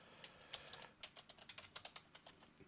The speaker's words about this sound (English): Now I'm just typing it up right now. Trying to find it. Yep. Transformer comic.